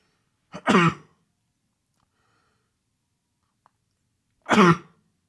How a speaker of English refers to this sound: And I'm going to sneeze 1 second.